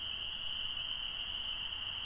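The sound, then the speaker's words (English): A dense, steady chorus of spring peeper frogs at a pond rings continuously, a high shimmering wall of calls, with a toad trilling in the background, a faint low rumble underneath and no voices. “So as we're sitting by the pond, listen to the spring peepers and the toad trilling in the back.”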